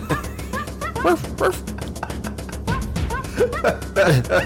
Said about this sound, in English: Let's go with the 64, DK 64. My apologies. Donkey Kong. Sounds like it's barking.